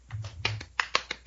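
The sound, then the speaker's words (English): A series of about five crisp finger snaps from one hand, sharp, coming in a quick, slightly uneven rhythm, with a faint low hum underneath at the start. “That's the sound of one hand clapping.”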